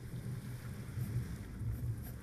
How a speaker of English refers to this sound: We have been out at sea now for 3 weeks. A violent storm had caught hold of us 4 days ago and will not let us go. The sails have been risen with the intent of us not drifting too far off course, as well as keeping the ship safe.